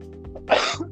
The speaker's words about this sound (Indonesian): Sorry gue batuk.